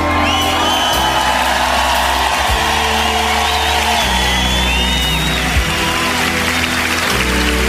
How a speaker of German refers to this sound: Ich bin dankbar für die wahnsinnige Erfahrung mit diesem wunderbaren Orchester, das Berner Symphonieorchester. Geben einen grossen Applaus!